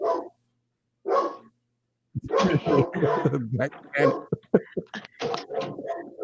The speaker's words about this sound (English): They rang my doorbell, so the dog is going off, and I apologize.